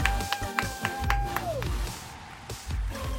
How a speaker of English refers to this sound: Get up on your feet and give a big round of applause.